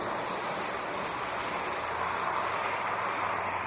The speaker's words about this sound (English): Just a car.